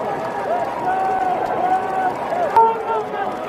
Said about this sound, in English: So listen, that does sound like booing, doesn't it? It does.